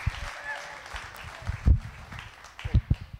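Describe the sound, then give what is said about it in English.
An audience applauds for Pastor Tasso with steady, dense clapping that forms a continuous wash of sound, punctuated by a few louder, sharper bursts toward the end. “Come on, let's give Pastor Tasso a round of applause.”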